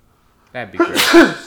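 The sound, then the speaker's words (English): A person speaks briefly, then a single sharp, loud sneeze bursts out, its breathy hiss cutting across the end of the words. “Bless you.”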